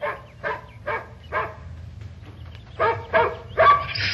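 A dog barks repeatedly during a dog training session, in short, sharp bursts, about seven barks in a loose rhythm, fairly loud over a low background rumble, the last few louder and more excited.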